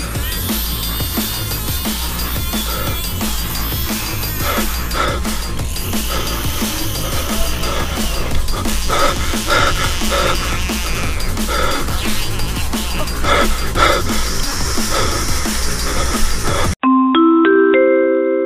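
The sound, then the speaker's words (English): Loud, dense electronic dubstep with pounding bass pulses and frog croaks mixed throughout, running continuously before cutting to a few brief, thinner chime-like tones at the end. “Just kidding, it's more frogs and dubstep.”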